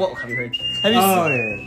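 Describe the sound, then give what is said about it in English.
A person whistles a short, sustained high tune that holds mostly steady and shifts pitch partway through, recalling a signal whistle from a movie. It is fairly loud, with a murmuring, voice-like sound underneath. “I'm trying to remember the whistle.”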